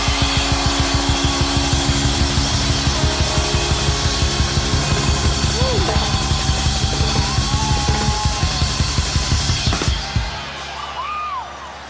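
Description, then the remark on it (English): A large audience at an evening event cheers loudly and steadily for those who took the Long Island Railroad to attend, with a quick rhythmic pulse like clapping or stomping and a few whistles riding on top, before the roar drops off abruptly near the end. “And last but not least, and I don't even care if this is the smallest group here, I want to hear the loudest cheers for how many people took the Long Island Railroad to be here tonight?”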